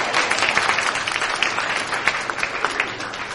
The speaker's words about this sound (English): Holy wisdom, holy word. Thanks be to God. I think we need to applaud that.